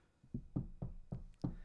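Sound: knock on a door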